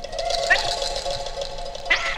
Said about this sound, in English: Oh, that's an otter. Well, he's got the hiccups. Yeah, he does. He does. Poor little otter hiccups. Those are the cutest hiccups I've ever heard.